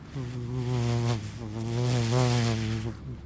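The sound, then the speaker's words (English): A person vocally makes a buzzing code noise for sensing COVID around groups of people, a steady, nasal droning hum that wavers slightly in pitch for about three seconds, with no other talk. “It's just a sort of little code noise, a little buzzing.”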